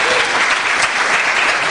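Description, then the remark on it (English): A crowd claps steadily in a dense, continuous burst of applause, loud and even throughout, with no voices standing out. “By round of applause, are you okay with that?”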